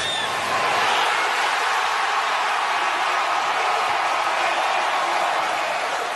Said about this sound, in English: You can hear the crowd reaction